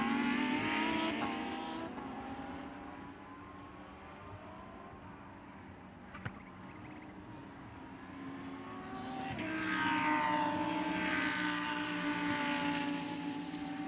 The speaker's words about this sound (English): There is Madison Snow coming up now to complete lap seven as the leaders flash across the line, doing well in excess of 160 miles an hour in this curving front straightaway at Virginia International Raceway.